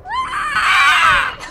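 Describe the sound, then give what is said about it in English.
A single loud, piercing screech from a human voice imitating an eagle's scream, rising sharply and holding for over a second before trailing off. “Did you do the eagle scream?”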